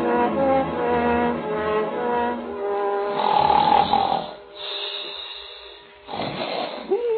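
A man snores loudly: a long, rumbling, buzzing inhale, then a breathy exhale ending in a thin whistle, before the next snore starts. No one speaks.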